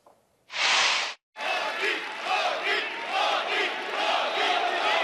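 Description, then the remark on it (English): A large crowd in Toronto roars in a sudden burst, breaks off for a moment, then keeps up loud, sustained cheering with a rhythmic chant pulsing through it, yelling for Prime Minister Modi of India, with Stephen Harper in the room. “They're yelling for Prime Minister Modi of India and lapping up some of the attention at the same time with Stephen Harper in the room.”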